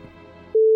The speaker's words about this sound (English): And goddamn you, phone. Phone? It's a giant phone, damn it.